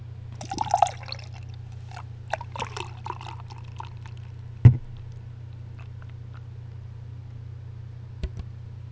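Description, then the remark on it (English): Outer Darkness Russian Style Imperial Stout, Brewers Reserve, by Squatters Craft Beer Company pours into a glass with bubbly splashing and gurgles that thin to a faint trickle, a sharp knock partway through, all over a steady low hum. “Time for the pour.”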